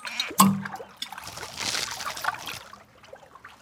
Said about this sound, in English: Splish splash, you wake up with water splashing on your face.